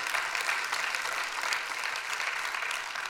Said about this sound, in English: And that's a good place to clap, church.